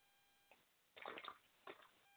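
Someone drinks water from a protein shaker bottle, spilling it down his face, with a short series of wet slurps, gulps and sloshes, the longest burst in the middle and a sharp one at the end, no talking.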